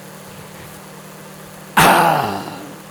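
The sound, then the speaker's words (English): A ship's 2-stroke engine, producing 13,614 horsepower at 127 RPM and driving twin screws, hums low and steady in the background, then a person lets out a loud, sudden exclamation partway through while the rumble continues underneath. “2-stroke engine producing 13,614 horsepower at 127 RPM, which amounts to a lot of torque on the twin screws driving this old girl.”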